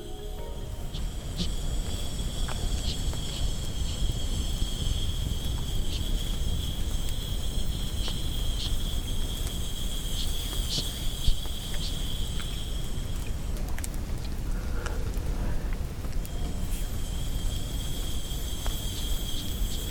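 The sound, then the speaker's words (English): A man, a beatboxer, imitates chirping crickets with his voice, a steady high trilling that holds for several seconds, breaks off briefly, then returns over a constant low rumble, with no talking. “When he does the crickets, it's just one of the most beautiful things I've ever seen.”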